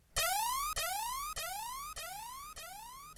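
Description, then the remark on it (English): An electronic alarm rings with a loud, repeating rising whoop, each sweep lasting about half a second and starting again straight away, heard on its own with no talking. “Well, Nick, that alarm reminds me to ask you about this manual situation.”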